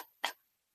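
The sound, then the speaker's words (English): A single short, harsh burst from a voice imitating a scream-like cough, loud and raspy, with brief quiet before and after and no talking. “Well, I don't think, listen, I don't think that there's coughing and then there's scream coughing.”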